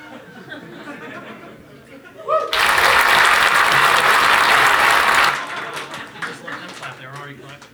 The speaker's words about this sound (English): I don't think they're clapping hard enough